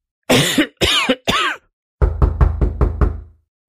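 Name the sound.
knocking on a door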